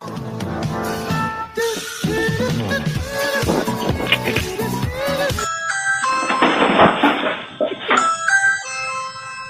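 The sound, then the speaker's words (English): A doorbell, rung by goats, rings over and over, its bright chiming tones repeating in quick succession after a dense, busy stretch of sound. The chimes are fairly loud and no one speaks. “I've never been ding-dong door ditched by my own goats before.”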